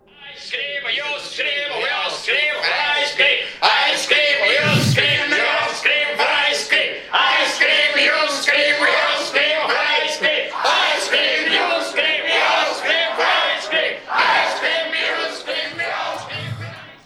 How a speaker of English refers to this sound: There's a crowd outside the window here screaming. Yes, it's nuts. It's just nuts. It's weird. It's frightening.